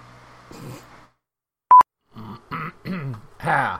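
After a brief sharp electronic beep, a voice lets out a few short, strained coughing bursts, rising into a rough, shouty cough that sounds almost like a feeble battle cry.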